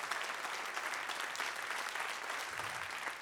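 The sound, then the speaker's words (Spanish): An audience applauds steadily for God, a dense, even wash of many hands clapping at a fairly constant level throughout, with no voices standing out. “Vamos, dale un aplauso.”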